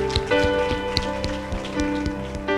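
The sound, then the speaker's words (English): An audience at a morning service of Release City Church applauds Jesus, a steady wash of many hands clapping at a fairly loud level, with sustained musical tones ringing underneath throughout. “Can we give Jesus a round of applause this morning?”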